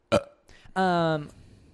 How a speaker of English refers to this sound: Burp break. Burp break. Yeah, I burped. So did he.